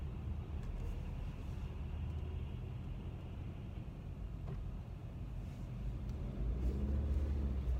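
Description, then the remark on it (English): Steady low rumble of bumper-to-bumper road traffic heard from inside a car, a continuous engine and tire drone with faint passing vehicle noise, including a tow truck coming up on the right side, swelling slightly louder toward the end. No one speaks. “So I'm in bumper and bumper traffic right now, so it's kind of...”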